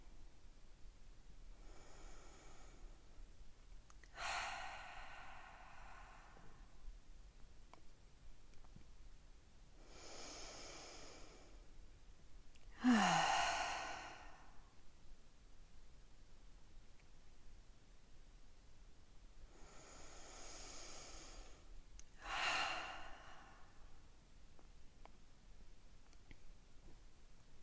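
Slow, deep breathing: three cycles of a long inhale through the nose followed by a sighing exhale through the mouth, separated by quiet pauses, with no talking.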